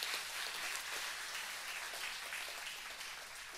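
An audience at a pastor's sermon gives a group a round of applause, clapping steadily for a few seconds, a dense, crackling wash of many hands at fairly low volume that fades slightly toward the end, with no voices over it.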